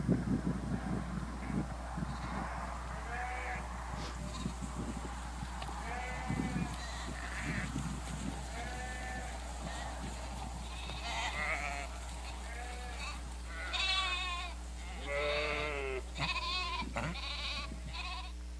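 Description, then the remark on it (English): Sheep bleat repeatedly as a woman calls them, wavering, quavering calls that overlap and grow louder toward the end, over a steady low rumble of wind and outdoor noise. “This is actually a woman who is calling her sheep.”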